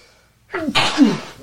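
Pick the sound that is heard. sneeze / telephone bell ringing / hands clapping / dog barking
sneeze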